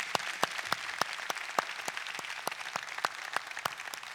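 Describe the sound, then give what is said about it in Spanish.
An audience applauds graduating young people steadily, many hands clapping in a dense, continuous wash with sharper individual claps popping out at a quick rhythm, moderately loud, with no one speaking. “Y antes de hacer esa oración, porque de hecho no les damos un fuerte aplauso a todos ellos.”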